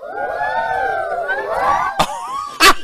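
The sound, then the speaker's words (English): A crowd does the "10-finger woo" for a priest, letting out a long, rising and falling chorus of "woo" cheers, many voices overlapping in a sustained high pitch, ending with two sharp bursts of claps or shouts. “And let's show Father how we do the 10-finger woo.”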